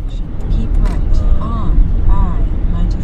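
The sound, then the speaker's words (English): Steady low rumble of road and engine noise inside a car driving to the town of Wayne, New Jersey, continuous and fairly loud, with faint muffled voices drifting in and out beneath the drone. “I'm in a car”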